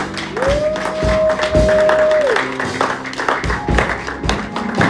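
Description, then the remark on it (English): An audience claps together as a closing clap of praise to the Lord, a dense, steady patter of many hands that stays loud throughout, while a single high sustained tone slides up, holds for a couple of seconds, then drops away. “Give a hand of praise to the Lord.”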